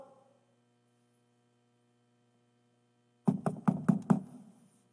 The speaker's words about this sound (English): Nope. Nobody answered. Ever knocked on doors and get no answer?